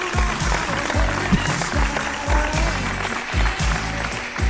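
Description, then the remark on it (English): A recorded applause track sound effect: dense, steady crowd applause fills the whole stretch at a loud, even level, with a repeating low, rhythmic thump running beneath it and no voices. “I got a new applause track.”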